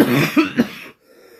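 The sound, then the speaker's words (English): A person recovering from a cold coughs in a quick burst of about three harsh hacks over roughly a second, followed by a faint, quiet tail. “We get this without you coughing your lungs up.”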